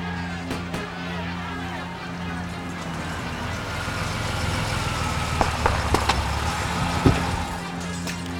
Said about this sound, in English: But long before our good professor arrives, we have a bit of a traffic jam in our small town.